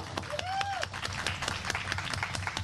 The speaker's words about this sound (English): Special guests, the St. Teresa's Grade 6. I think everyone deserves to give them a round of applause for sure.